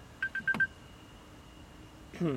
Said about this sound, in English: Oh, sorry about this. I have my phone alarm.